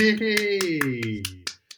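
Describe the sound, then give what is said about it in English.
About seven quick hand claps in a steady rhythm from a person clapping for themselves, ringing out over a drawn-out voice that trails off, with the last couple of claps nearly on their own. “I really should not be clapping for myself because there's somebody sleeping next door.”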